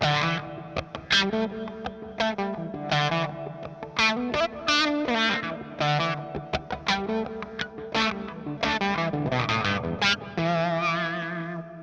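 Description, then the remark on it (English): An electric guitar plays a continuous melodic line with a driven, slightly distorted tone, each note trailing off into spacious reverb and audible delay repeats, the reverb's sample rate set to a classic mode much like the Lexicon 224. No one speaks over it. “We could really start to hear the delay there.”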